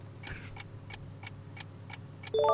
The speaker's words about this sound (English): Let's hear 5 seconds of ticking noise plus a correct jingle.